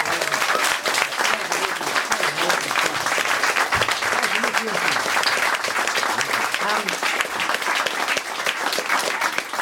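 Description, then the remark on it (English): A large audience applauds itself steadily for several seconds, a dense, continuous wash of clapping with some faint voices and cheers mixed in throughout. “Let's just give all of ourselves a big round of applause.”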